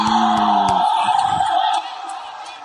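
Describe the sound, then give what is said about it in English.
A loud crowd at a rap battle roars, cheering and yelling all at once in reaction to a rapper's bar, with shouted voices rising above a dense wall of noise that eases slightly toward the end. “You can listen to the crowd reaction, bro. Oh, yeah, they're going crazy.”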